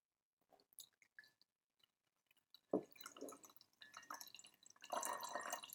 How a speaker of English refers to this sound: So start by pouring the red one. Nothing too difficult so far. Just shake out the last few drops.